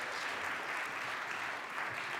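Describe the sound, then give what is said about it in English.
A crowd applauds a group of people steadily, a dense wash of many hands clapping at once, sustained and even throughout with no pauses or voices standing out. “Okay, round of applause for these guys.”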